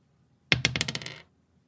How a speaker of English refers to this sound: Take those dice and roll them.